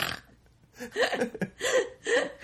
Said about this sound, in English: Burp them to death.